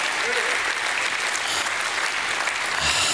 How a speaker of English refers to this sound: If you agree with me, just give God another hand clap and a shout of praise.